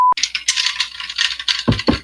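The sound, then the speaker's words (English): Ice cubes rattle and clatter inside a glass in a busy, continuous jingle, ending with two heavier clunks as the glass is shaken. No one speaks. “It's a glass with ice in it.”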